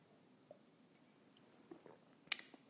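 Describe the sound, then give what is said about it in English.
A quiet sip of coffee: a few soft, wet mouth sounds build to one brief slurp near the end, followed by a small swallow-like click, with no talking. “It's called the simultaneous sip, and it happens now.”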